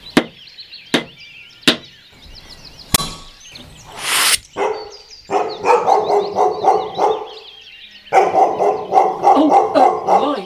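Three sharp taps on a window ring out and a pea is shot at Barney the dog, who starts barking in rapid, excited bursts that continue steadily to the end, with no one speaking.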